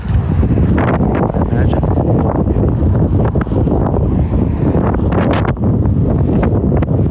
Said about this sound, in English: Ooh, it's windy. So you can hear the wind.